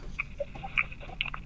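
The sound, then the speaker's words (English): Someone chewing chicken while eating dinner, with soft, wet mouth clicks and smacks in an irregular rhythm, a handful of short bursts over a low background hum, with no talking. “Kind of eating dinner.”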